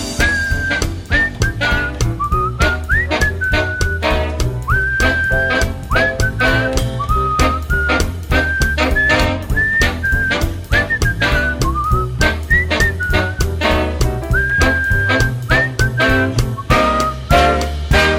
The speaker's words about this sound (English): Whistle solo.